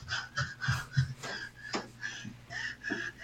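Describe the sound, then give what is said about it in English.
A woman fakes heavy breathing while running around: rapid rhythmic puffs, about eight breaths in three seconds, fairly loud, with no talking. “When she runs around, she fake sharpening like, a heavy breathes. It's awful.”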